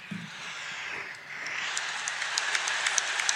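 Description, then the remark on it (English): Applause from a crowd: a steady, dense wash of clapping that dips briefly, then swells again with sharper individual claps popping out toward the end. No one speaks. “Is that you applauding?”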